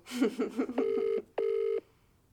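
An outgoing phone call ringing: two steady, evenly pitched ring tones, each about half a second long, separated by a short pause. A brief warbling tonal sound comes just before them.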